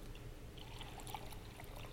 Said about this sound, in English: And then in the same way, he took the cup and he poured it out